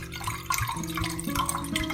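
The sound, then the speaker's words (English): Water pours steadily into a glass for about two seconds while an Aurora Borealis vodka drink is mixed, a gurgling trickle with a faint rising ring as the vessel fills. No voices. “Let's add a little bit of water.”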